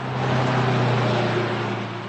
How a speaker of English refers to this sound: He's filling up his big pickup truck at a local gas station